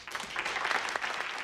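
Light, scattered applause from a small group of delegates greeting John Adams, introduced as a new delegate from Massachusetts, soft and steady for a moment with no voices over it.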